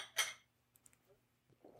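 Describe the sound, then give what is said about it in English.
Glasses clink together in a toast before tasting a drink: one sharp, bright chime with a short ringing tail, then a couple of faint, tiny ticks and a low murmur. No one speaks. “Let's taste it. Cheers, guys.”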